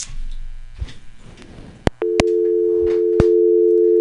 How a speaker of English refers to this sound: Ah, the sweet, sweet sound of a dial tone. Not really. I do appreciate when folks call in. Please call back.